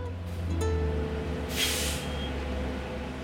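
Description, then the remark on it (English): City buses arrive one after another at a city bus stop in San Diego on an unbearably hot summer morning: a deep, steady engine rumble, and a sharp burst of air-brake hiss breaks through about halfway before the droning engine carries on. “It's an unbearably hot summer morning, and I'm waiting for her at a city bus stop, pacing nervously. Bus after bus comes by.”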